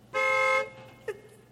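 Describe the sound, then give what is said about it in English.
A car horn honks once, a loud, steady blast lasting about half a second, followed by a brief faint chirp against quiet background noise. “Why do you beep the horn like that?”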